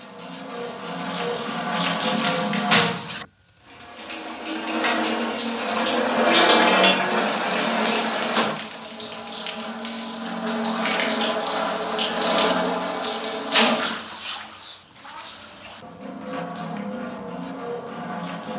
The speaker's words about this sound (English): But my real favorite sound, the sound of the dye from the rugs hitting the like vat, and it sounds like a drum.